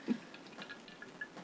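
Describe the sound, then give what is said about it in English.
Someone quietly sips a drink: a soft wet slurp at the start, followed by a few faint liquid clicks and swallows spread over a second or so, with no talking. “I'm going to take a sip.”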